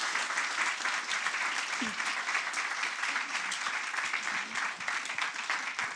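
A crowd applauds steadily for several seconds, a dense, continuous wash of many hands clapping, with no voices rising above it.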